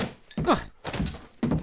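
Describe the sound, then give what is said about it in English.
A mallet whacks something three times in quick succession, each blow a dull, heavy thunk with a short rumbling tail, fairly loud and evenly spaced. “Oh, where's that mallet I keep around here? Look, here it is, okay.”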